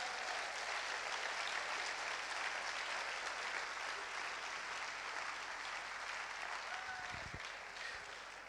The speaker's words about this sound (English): So I'm gonna invite my mom on stage so you guys can give her applause as she comes on stage.